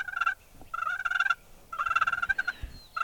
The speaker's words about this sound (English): Gobble. Ooh, that sounded closer. Gobble again.